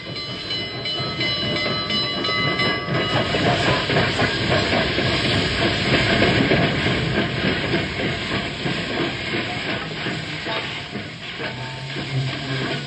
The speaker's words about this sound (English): The train just pulled in.